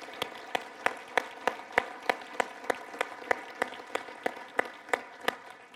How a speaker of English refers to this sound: So those are hand claps of praise, really, to God.